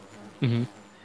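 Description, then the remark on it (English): A bee buzzes briefly, a steady droning hum that swells in and cuts off after about a quarter second, like it is zipping past one ear. “Ashton hears this buzzing and he feels something like fly by one of his ears.”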